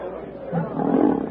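A black panther, Sheeta, snarls in a low, rasping growl that runs unbroken for over a second, swelling louder and harsher toward the end, aggressive, as it sinks to the ground gathering itself for the charge.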